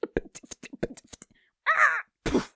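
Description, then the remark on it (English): Outside an inn, a rapid flurry of soft wingbeats from a crow above fades out, followed by two loud, harsh crow caws, the second one rougher and shorter. “And as you're standing with him outside of his inn, and he's been introducing himself, and you've been introducing yourselves to all of him, you hear this strange flapping noise above you.”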